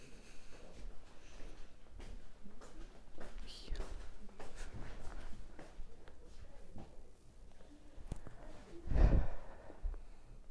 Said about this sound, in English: My breathing.